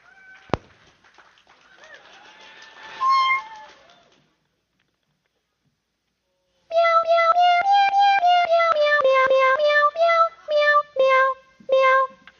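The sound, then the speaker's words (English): A cat piano is played during a live song performance, a rapid, loud run of meow-sampled notes stepping up and down in pitch like a tune, starting after a stretch of near silence and ending in a few separate meows. “this is a song Aubrey sings, but I am going to play the cat piano”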